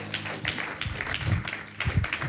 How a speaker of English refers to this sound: Well, clap your hands for God.